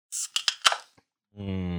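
A beer being opened: a quick run of crackling, hissy bursts ending in a sharp pop and fizz. A brief pause follows, then a low, steady voice-like tone.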